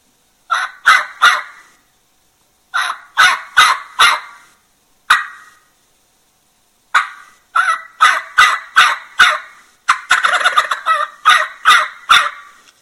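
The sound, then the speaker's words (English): A hunter's call imitates a young turkey's jake yelp: coarse, raspy notes in uneven bursts of three to six, separated by short silences, with one choppy, rattling run near the end. No talking. “But that's what I think about when I do a Jake yelp.”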